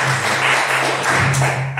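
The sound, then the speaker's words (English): Steady applause from a crowd welcoming a woman introduced as a guest, a dense wash of overlapping claps holding at a fairly loud level for about two seconds, with a low steady hum underneath and no talking. “Round of applause for this amazing woman.”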